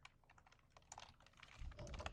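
Rapid typing on a computer keyboard, a steady stream of light clicking keystrokes, with a low rumbling hum rising underneath toward the end. No one speaks.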